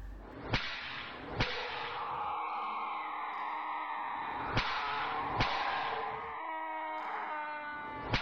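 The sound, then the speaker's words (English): Five sharp, loud whip cracks land in uneven pairs, each a crisp snap, as a whip strikes a prisoner in a castle. Between them a steady, wavering moan-like tone drones on in the background. “It was the sound of a whip striking a prisoner, and by the ferocity of it, it didn't sound like the poor inmate had long to live.”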